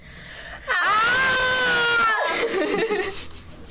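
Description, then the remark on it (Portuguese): A loud, sustained scream rings out for over a second, then breaks into a rougher, trailing shriek that fades quickly. There is no other talking. “naquela frase da Courtney Love, que é muito bom gritar”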